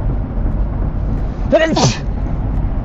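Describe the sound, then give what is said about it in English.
A single sharp sneeze bursts out around the middle, a quick voiced intake followed by a breathy explosive release, over a steady low background rumble. “Hold on, I gotta sneeze.”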